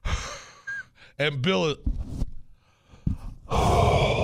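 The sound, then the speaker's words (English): Heavy, rasping breaths from an attorney falling asleep on the other end of a phone line, loud, a few long inhales and exhales, with brief bits of other voices talking in between. “That's a perfect example of the attorney on the other line falling asleep.”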